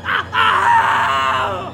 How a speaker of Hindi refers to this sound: सन्नाटे के बीच निकली उसकी चीख डर को उसके करीब होने का एहसास दे रही थी।